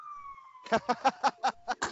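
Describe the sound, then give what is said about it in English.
An emergency vehicle siren wails outside, a sustained tone sliding slowly downward, then joined by rapid, evenly spaced pulsing bursts as it carries on at moderate volume. “Because I can only assume you can hear that siren.”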